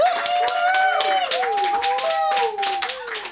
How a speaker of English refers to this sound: Give him a big applause as he gets to the stage.